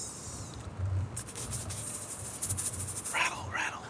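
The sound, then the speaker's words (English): A breathy hissing rattle made by a voice imitating a rattlesnake, buzzing steadily for a few seconds with uneven pulses and no words. “Rattle. Is that the name of the episode? Rattle.”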